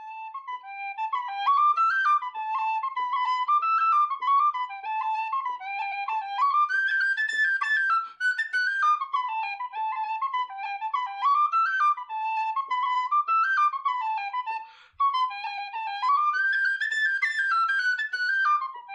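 A tin whistle plays a lilting traditional melody solo, bright, with flowing ornamented phrases that rise and fall steadily, pausing briefly between phrases.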